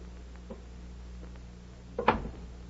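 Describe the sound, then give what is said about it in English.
A door latch clicks and a door swings open with a short wooden clunk, preceded by a faint earlier click, all over a steady low background hum; the door is being answered from a living room on Stone Street. “Excuse me a minute, Betty, while I answer the door.”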